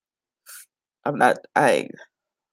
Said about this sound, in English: I'm good. Over here, we coughing.